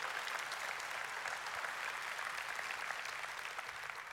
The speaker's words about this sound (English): We can clap for that. Come on, we can clap it up for that.